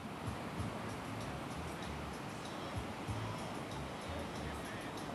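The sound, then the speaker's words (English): A steady wash of surf rolls on without pause, the broad roar of waves good for surfing breaking on a beach, with faint low thumps beneath and no voices. “You'll hear music from the reggae bar and the sound of waves that are good for surfing but don't attract too many people on the weekdays.”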